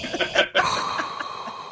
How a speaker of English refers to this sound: Well, you're also always breathing. Well, that's because I'm trying to do kitchen work around the house.